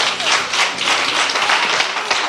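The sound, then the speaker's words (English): A crowd at a church service applauds steadily as a hand clap of praise to God, many hands clapping at once in a dense, continuous wash of sound that stays loud and even throughout, with no voices standing out. “Somebody give God a hand clap of praise.”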